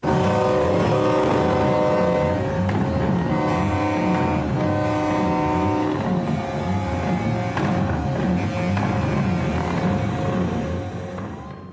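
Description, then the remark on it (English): Loud, sustained semi truck horns blare almost without pause over a deep, rumbling roar of revving big-rig engines, dense throughout, easing off slightly at the very end. “The semis revved their engines, blasted their horns, and blew smoke from their stacks like dragons.”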